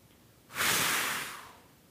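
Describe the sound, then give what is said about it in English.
A single long, breathy blow of air starts abruptly and then slowly fades, someone blowing steadily on glowing coals at the bottom of a fire pit to rekindle the kindling. No voices are heard. “And as the breath comes and it catches those embers, they catch fire and the kindling begins to crackle and the fire's burning again.”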